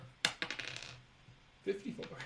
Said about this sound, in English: Still rolling dice. Don't, please. He's still rolling dice. Please. Please don't. Please, no, sir.